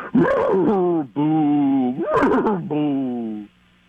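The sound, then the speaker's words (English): A voice imitates a ghostly horse, drawing out four loud, wavering whinny-like cries with sliding, quavering pitch, one after another with no other sound, before falling quiet. “Okay, let me try a ghost horse.”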